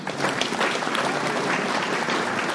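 An audience at an Alcoholics Anonymous meeting breaks into steady, loud applause, a dense wash of many hands clapping that holds at an even level throughout without fading.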